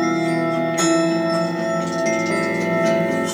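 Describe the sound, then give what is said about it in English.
Ringing bell tones sustain through a dense piece of music, with a fresh strike about a second in that swells the sound before it settles into a steady, resonant drone. No voices. “I totally hear it. It's the bells.”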